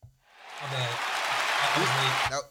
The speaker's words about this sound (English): Yeah, round of applause, man.